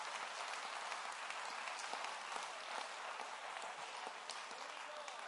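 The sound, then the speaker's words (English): A crowd claps its hands to the Lord in praise, steadily, a dense wash of many overlapping handclaps that stays at a fairly even, moderate loudness for the whole stretch, with no talking over it. “Come on, clap your hands to the Lord and praise him.”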